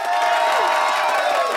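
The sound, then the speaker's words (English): An audience cheers loudly and steadily for quiz contestants, a dense wash of many voices whooping and shouting together with some applause mixed in, sustained at full volume for the whole moment. “Let's give a hearty cheer for the contestants.”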